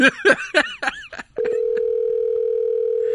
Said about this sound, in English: I'm gonna see if she can pick up the phone.